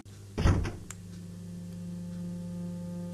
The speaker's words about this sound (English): And the last door, which I can open. Woohoo!